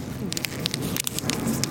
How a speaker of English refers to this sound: It looks like a shiny trampoline. There's like 5 hair-thin layers to it. And it's made of this crinkly material that looks like what Mylar balloons are made of, honestly.